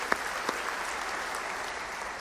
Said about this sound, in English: So give them a big round of applause, and thank you for welcoming us in.